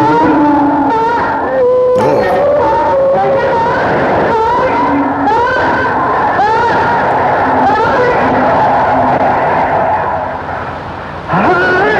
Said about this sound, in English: The Vietnamese people worship the souls of their ancestors. But this wandering soul is very different. It was conceived in an echo chamber by the U.S. Army and is broadcast from a helicopter over jungle where the gooks are supposed to be hiding.